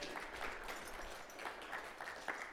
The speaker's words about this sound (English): let's give her a big round of applause.